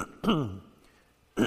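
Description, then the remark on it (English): A raspy throat clearing with a rough cough from a lingering illness in its fourth week, followed about a second later by a shorter second clear; no talking, just the two throaty bursts against a quiet background. “The thing's gone, but the residual is still there, and I'll probably cough a few times.”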